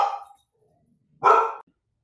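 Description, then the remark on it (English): A dog on a leash barks twice: one bark trailing off at the start, then a pause, then a second loud, sharp bark. No one talks, and it is quiet between the barks. “You noticed that my dog interrupted.”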